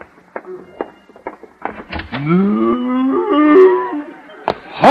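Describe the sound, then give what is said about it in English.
In the radio show Our Miss Brooks, a cow lets out one long, loud moo with a rising, drawn-out tone lasting a couple of seconds, preceded by a few short clicks and knocks, and followed by a brief sharp sound. “And you do mean cow.”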